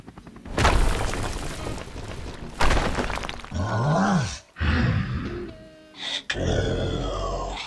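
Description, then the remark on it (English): A loud, chaotic crash of breaking debris as something crashes through a building wall, followed by a deep growling roar and heavy rumbling impacts, with sharp shattering bursts near the end. “crashes through the wall.”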